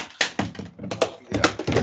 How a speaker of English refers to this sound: I love how you just knocked over everything as we're trying to record. I was trying to plug my computer in.